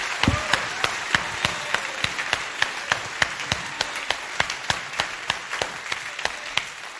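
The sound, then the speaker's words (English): A round of applause for the Pathway musicians and vocalist at a church, heard as sharp, steady handclaps keeping an even, quick rhythm for about seven seconds, with no voices over it. “Can I hear a great big round of applause for the Pathway musician and vocalist?”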